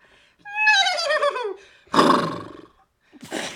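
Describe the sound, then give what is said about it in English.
A child's voice, asked to do a horse, imitates a horse neigh: a high, wavering whinny sliding downward, followed by two loud, rough, breathy bursts, with brief silences between them. “Do a horse. Nay.”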